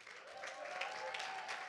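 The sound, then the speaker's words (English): A crowd at a World Evangelistic Ministry gathering claps for Jesus steadily, a dense wash of many hands at a fairly even, moderate loudness throughout, with a faint sustained tone beneath it. “Give Jesus a hand clap.”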